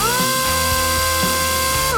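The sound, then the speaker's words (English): A Scryatech T13 portable warp grinder drill runs steadily for two seconds, a droning mechanical whine with layered tones and faint rhythmic knocks underneath, fairly loud, with no one speaking. “With a top plate of prefamulated omulite surmounted on a logarithmic tintaginal casting to provide increased coefficiency, the T13 by Scryatech is the most powerful portable warp grinder drill in the world.”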